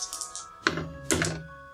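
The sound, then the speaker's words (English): Opalite dice clatter across a table in a few quick bursts, a light rattle followed by two sharper tumbling clacks, landing on a 5; fairly quiet, with no talking. “Roll me luck. Mmm. Come on, sweet, sweet opalite dice.”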